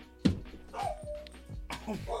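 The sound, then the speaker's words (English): A dog lets out a sharp bark, then a thin, drawn-out whimper, followed by another short bark and more whining, fairly loud against a low background hum. “Way to go, get the dog going.”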